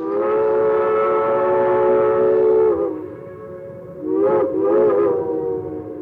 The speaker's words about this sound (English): And of course, that was the coming of the B&O Railroad. Just about the time things looked good for this area. Well, then here along comes the B&O Railroad, serving the northern section of Western Virginia.